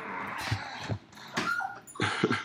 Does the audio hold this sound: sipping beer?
no